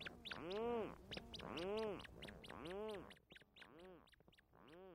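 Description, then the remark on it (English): Medium-sized, dark gray, duck-like burrow-nesting seabirds call in the middle of a July night, returning from sea with fish for their chicks, in a steady series of loud, nasal, rising-and-falling cries, about five overlapping bursts with hardly a pause and no talking. Recorded by Jeff Rice with the Acoustic Atlas at Montana State University. “medium-sized, dark gray duck-like birds that spend their days at sea and then return at night”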